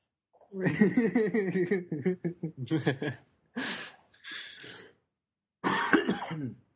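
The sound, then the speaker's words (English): A voice groans and sputters into a run of harsh, raspy coughs from a bad cough, with several rough hacking bursts and throat-clearing sounds broken by short pauses, fairly loud. “Symptoms are a bad cough and lack of memory.”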